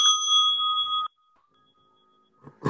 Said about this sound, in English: Very nice to have the bell.